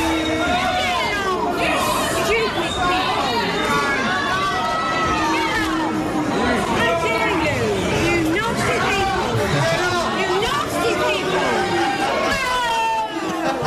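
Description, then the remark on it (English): A packed theatre crowd erupts in loud, continuous booing and jeering amid chaos, many voices overlapping in a dense, chaotic roar with individual shouts cutting through, including a woman shouting at them, unrelenting for the whole stretch. “And people were booing, like it was all chaos in the theatre. Here's a clip of the booing, and listen out for the lady, maybe is recording or beside the person recording, shouting at them.”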